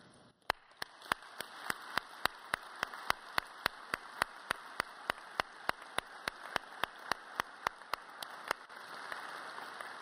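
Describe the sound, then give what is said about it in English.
An audience applauds in a dense, steady wash of clapping, with sharp claps landing in a regular quick rhythm throughout; the crisp beats drop out near the end while the broad applause continues. “If any of you would like to join me in asking forgiveness to our minority brothers and sisters, don't do it just because others do, but I would say, let's do so by means of applause right now.”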